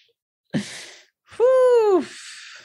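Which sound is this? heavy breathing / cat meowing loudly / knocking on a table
heavy breathing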